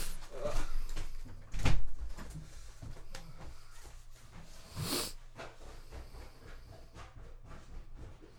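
A door is opened and then shut, giving two distinct clunks a few seconds apart against a low background rumble with faint movement noises.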